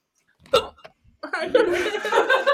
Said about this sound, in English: Oh, no. She got hiccups.